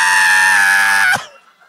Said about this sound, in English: You mention a celebrity, and then you scream. That's what it is.